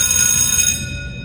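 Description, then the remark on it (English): A timer bell sound effect, set off by error, rings with a bright, shimmering metallic tone full of high overtones, holding steady for a moment before quickly fading away. No one speaks. “Satan pushed that bell.”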